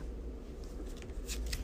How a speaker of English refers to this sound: It was going to get shuffled back in anyways because there was no enemies. So that's shuffled.